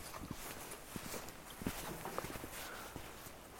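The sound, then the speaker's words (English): Hooves clop unevenly on hard ground as a local herds a cow along, a steady scatter of soft steps with faint outdoor ambience and no talking. “A local was trying to herd a cow and was just telling me to walk.”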